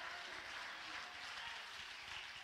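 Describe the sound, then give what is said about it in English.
A large church audience claps hands in a dense, continuous, loud burst of applause for a couple of seconds, with crowd voices faintly mixed into the clatter as worshippers clap and shout hallelujah. “Come on, if you're grateful or thankful, clap your hands and shout hallelujah.”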